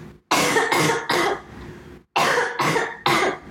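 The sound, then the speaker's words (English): Two quick bursts of harsh coughing, three hacks each, separated by a short pause with no talking. “Okay, y'all, I've been holding in a cough forever, but stand by.”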